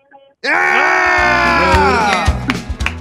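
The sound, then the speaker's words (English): A male caller imitates a honk: one loud, sustained, buzzy blare that starts abruptly and holds for over two seconds, its pitch sagging slightly before it breaks off. “give us one of the honks. Honk it up.”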